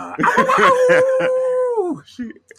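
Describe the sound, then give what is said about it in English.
A man's voice imitates a female wrestler's howl: a few short, choppy vocal bursts lead into one long, sustained wavering tone that slides downward and fades out, followed by a brief breathy sound. “I don't do her justice doing those howls, man.”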